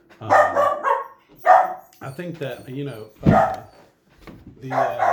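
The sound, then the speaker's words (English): A dog named Chopper barks several times in short, loud bursts, the barks breaking in between and over a man's speech. “Chopper agrees with me. You can hear him.”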